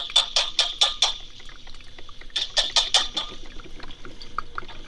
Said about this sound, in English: So I'm gonna dump the beans into the cauldron of cow flesh.